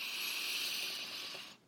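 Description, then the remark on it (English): A steady, airy breath drawn in through the nose during a guided breathing exercise, lasting a second and a half before cutting off. No one speaks. “Notice your breath as it comes in your nose and then out of your mouth.”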